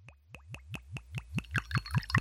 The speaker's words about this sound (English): Let's see if I can pour it without pouring it over myself.